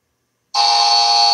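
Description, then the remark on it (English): After a brief silence, a bell suddenly rings out loud, rung to mark a correct answer in a call-in quiz game, a bright metallic tone that holds steady without fading. No one speaks over it. “Let me get the bell.”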